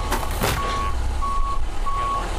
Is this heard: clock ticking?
no